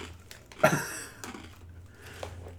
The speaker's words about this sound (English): You chew really loudly. Yeah, you that's do. True. Yeah, you do. That's you also those occasionally chew sounds. With your mouth open.